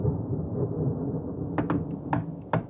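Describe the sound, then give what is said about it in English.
A steady, muffled rumble of rain and thunder on a stormy October night at a motel in San Antonio, Texas, in 1940 fills the background, then a few sharp knocks cut through near the end. No one speaks. “It's a rainy October night at a motel in San Antonio, Texas, 1940.”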